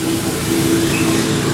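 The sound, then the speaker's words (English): A steam cleaner runs steadily, a loud continuous mechanical drone with a low humming tone under a broad hiss, holding an even level throughout with no voices. “Well, that's just the steam cleaner.”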